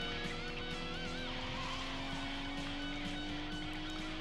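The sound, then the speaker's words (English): Car engines roar steadily during a car-to-car chase scene in a film, one engine's pitch climbing slowly, with brief tire squeals and dense road noise layered throughout and no voices. “Okay, now we get to part two of the chase.”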